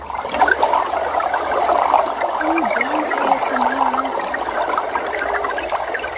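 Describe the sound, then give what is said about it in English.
Steady gurgling of water bubbling through a bong, a continuous churning, splashing rush that holds an even loudness for several seconds with no voices. “And now let's just listen to Bubbles.”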